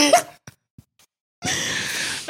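A short, harsh cough bursts out at the start, then a brief pause with a couple of tiny clicks before a longer raspy, breathy cough-like exhale follows, moderately loud.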